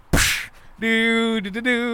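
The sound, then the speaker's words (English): A voice imitates a cracking whip, mimicking Buck Flower as the Marquis de Sade in the film Waxworks: a short, sharp hissing burst, then a brief pause and a sustained, buzzy voiced tone with a slight pitch dip, fairly loud. “All this whipping is giving me a lot of tired.”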